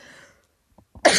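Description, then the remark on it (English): A sudden, forceful sneeze bursts out during a GBH news radio broadcast after a brief hush and a couple of small catching breaths, loud and explosive at the very end. “And the Bless you.”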